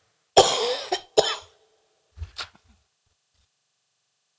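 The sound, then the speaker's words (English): A short coughing fit: two harsh, strong coughs in quick succession, then a pause and a couple of softer, throatier coughs trailing off. “Can you get my cough drops in my back?”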